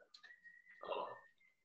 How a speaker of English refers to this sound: Whoever's whistling, tell them to chill out, nigga.